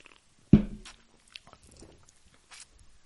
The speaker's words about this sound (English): All right. Now everybody take a drink.